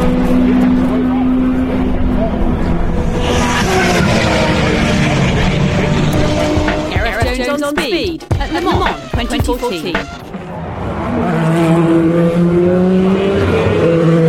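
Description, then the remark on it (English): Racing cars, including a Porsche 919 and an Audi, scream past one after another at the Porsche Curves during the 2014 Le Mans 24-hour race, engines rising and falling in pitch as they approach and fade, with a sharp burst of revving and gear changes in the middle as a car sweeps by. “I'll leave you with a couple of moments of cars coming by.”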